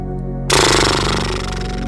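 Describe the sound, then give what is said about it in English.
A person doing a horse-lips breathing exercise blows air through loose lips on an exhale in a loud, buzzing horse-like flutter that starts after a brief quiet moment and continues steadily, rapidly pulsing, until the end. “You'll take an easy breath in, and then as you exhale, gently bring your lips together and blow air through your lips. Might sound a little bit like this.”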